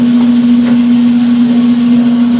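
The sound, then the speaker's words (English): A coffee roaster dropping its roasted beans: a loud, steady machine drone with a constant low hum, overlaid by a continuous rushing, faintly rattling wash. No one speaks. “So I stopped it on my cropster and now we drop the roast.”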